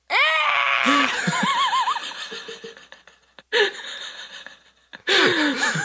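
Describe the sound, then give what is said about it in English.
A high-pitched, unearthly screech from the reanimated skeleton of Sun Wukong comes in three loud, wavering bursts with a shrill, whinny-like warble, separated by brief gaps, with no talking. “The skeleton opens its mouth, emitting a high-pitched, unearthly screech.”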